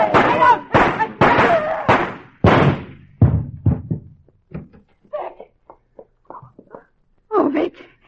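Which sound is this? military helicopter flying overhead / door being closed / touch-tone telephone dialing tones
door being closed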